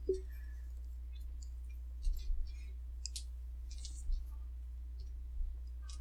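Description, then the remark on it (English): Small hard dice clatter and click together in scattered bursts as a hand sifts through a set of dice looking for a d8, fairly quiet over a low steady hum. “Finding the correct dice. I need one more d8.”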